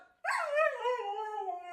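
A single drawn-out dog howl that starts abruptly, dips slightly in pitch and then holds a steady, mournful tone. It is clear, with no voices.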